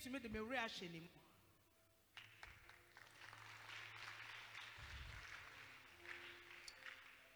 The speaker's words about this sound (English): Your clapping is weak.